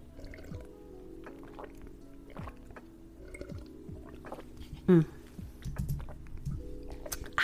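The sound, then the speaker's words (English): Quiet sips and swallows of water, with small wet mouth sounds and a faint liquid gulp or two; no one speaks. “Water is just so good.”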